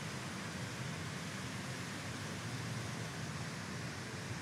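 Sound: rushing water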